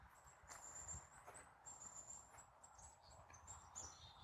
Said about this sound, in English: You said to listen to the sounds of the forest. Oh, we got bird input. Holy crap, Biff, did you hear that?